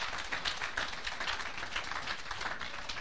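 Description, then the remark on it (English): An audience claps together in a steady, dense wash of applause lasting about three seconds, holding an even loudness throughout with no voices standing out. “Oh, go ahead and give a clap of it.”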